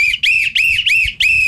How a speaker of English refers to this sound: A couple days ago, I was driving along trying to get to my destination, and we crossed paths because you wouldn't shut up with your whistling.